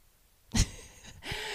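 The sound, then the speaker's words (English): A dog named Wushu sniffing with his head on a person's shoulder during a recording: a sharp, loud snuffling burst of breath followed by a longer, airy huff of sniffing, with no talking. “Can you hear him sniffing?”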